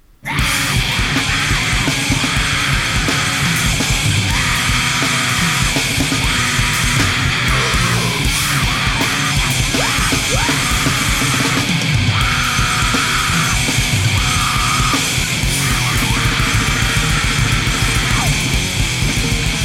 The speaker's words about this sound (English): This is two songs over 2.5 minutes.